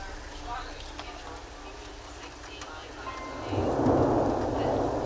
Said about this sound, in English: Getting into one of the field recordings, one of the serendipitously beautiful field recordings where the thunder would happen and then the music in the background just went along with it amazingly well.